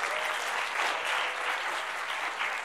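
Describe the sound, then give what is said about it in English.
An audience claps together in a dense, steady wash of applause that holds an even loudness from start to finish, with no voices standing out. “And saying when you guys accepted and believed in it, give yourselves a good clap offering.”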